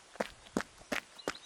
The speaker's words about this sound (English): As I pick up speed on the Bridle Path, the receding traffic is replaced with singing birds. My footsteps crunch along the soft gravel, becoming faster with every step.